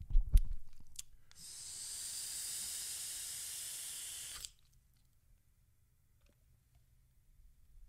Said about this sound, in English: Now, let's try to vape this with some mango. Does this have, I think both of these. Yeah, these both got mango in them. Let's try a little bit with some mango, shall we? Hang on.